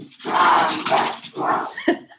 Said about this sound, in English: My dogs are full on crazy. They clearly have had enough Tank 7. Hey guys, calm down. Holy moly. They're like, Mom, pay attention. look, I'm on the couch.